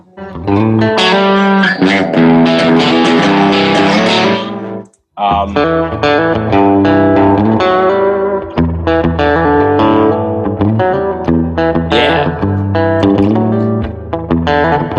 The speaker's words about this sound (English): It sounds so different with the spring reverb. It sounds like a song.